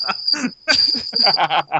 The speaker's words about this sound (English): Nice. Crickets. Cricket sound. Crickets. Gotta be quicker.